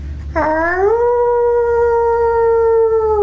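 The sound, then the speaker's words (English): A woman in a TikTok video imitates a wolf howl: one long, loud howl that swoops upward at the start and then holds a steady, tuneful pitch to the end, with no talking. “She does do a pretty good howl.”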